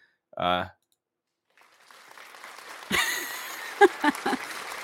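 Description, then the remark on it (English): A polite golf clap sound effect played on a show: a few sparse, crisp hand claps rising over a low crowd murmur after a short tonal blip, restrained rather than a full round of applause. “That sounds like a golf clap.”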